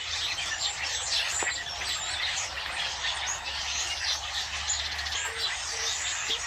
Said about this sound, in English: This is Brent's recording of his early morning starlings.